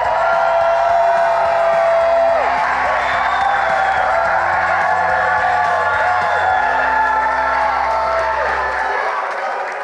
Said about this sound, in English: This weekend is our grand opening, and all these guys, one more time, are going to give you a great big shout out all the way from San Pedro Sula. Come on, guys, give them a big shout out one more time.